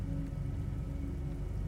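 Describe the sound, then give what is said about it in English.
Steady, dense rain hisses continuously, with a heavy low rumble of thunder underneath. No voices, just the constant wash of the storm for the whole moment. “Over the thunder and rain.”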